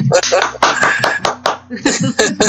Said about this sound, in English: I know I've said a lot of things, sorry. I feel like clapping.